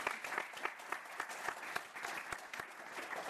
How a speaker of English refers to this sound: So I just want to be able to give a quick round of applause to everyone at the Commonwealth Club that puts on programming, that survived a pandemic, and that brought you guys here today.